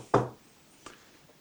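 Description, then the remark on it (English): Knuckles knock on wood twice, a firm rap followed by a quieter second tap after a short pause, with nothing else but a faint hush. “Is that your first time knocking on wood”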